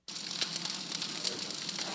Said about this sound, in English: Yes, the fire in the fireplace.